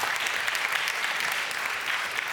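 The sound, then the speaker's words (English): A short burst of audience applause for the worship team, many hands clapping together in a steady, dense patter at moderate loudness, with no voices over it. “Yeah, give them a little clap.”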